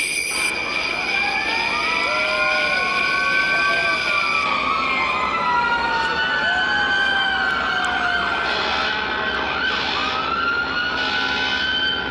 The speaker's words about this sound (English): This sounds like Christmas in a police state. Or at the site of a natural disaster. Nothing says Christmas like sirens. Hear the sirens?